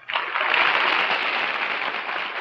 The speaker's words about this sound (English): While they're clapping, an applause-o-meter appears on the screen, and the woman with the loudest claps, she gets to be queen for a day and have her wish granted.